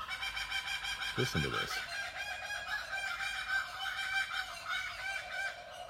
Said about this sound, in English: Let this be the year where you get to listen to the bird calls with me on the veranda.